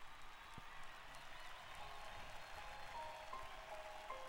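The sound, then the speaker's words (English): Steady wash of crowd applause and murmuring at the start of a song recording, a broad hiss of many hands clapping at once, with a few faint high tones glinting through near the end. “I like this, like the fake crowd noise, or maybe real crowd noise.”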